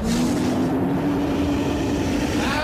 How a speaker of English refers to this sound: Alright guys, so if we all remember, we are speeding on a giant boat. with Babop. He is driving this big giant boat with this huge jet engine on the back of it that is hurling you down close to 70 miles per hour down this